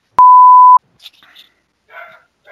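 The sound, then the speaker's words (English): A sharp electronic beep, then a dog barks faintly, a few short, muffled yaps spread over the next couple of seconds. “I think he'll stop barking once the truck...”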